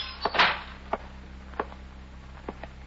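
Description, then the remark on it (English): A sun-warped screen door of a dilapidated waterfront hotel swings open with a brief rushing creak as a young man in his mid-20s enters the lobby, then it claps shut, followed by a few light, spaced clacks and rattles over a low, steady background hum. “He opens a sun-warped screen door and enters the lobby.”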